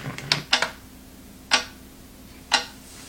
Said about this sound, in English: So, who could sleep to this? Could you sleep to this? Let me know. If you can sleep to a clock ticking like this.